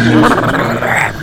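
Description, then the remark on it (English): Loud snarling and growling from wolves attacking a soldier, pulling him to the ground and gnawing at him, in a continuous, harsh rumble, aggressive and unbroken for about a second, with no talking. “Just to clarify, this is not the general, he's standing right beside the general, but the wolves go after the soldier, pull him down to the ground, gnaw at him, and it actually kills him, so they kind of rip him apart, I guess.”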